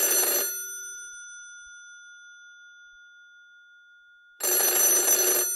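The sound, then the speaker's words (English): An old-style telephone bell, the cab phone of the Infernal Express train, rings loudly in a short rattling burst that trails off into a fading metallic hum. It starts ringing again after a few seconds of quiet. “I believe it is the cab phone. Our train cab has a phone? It's ringing so evidently.”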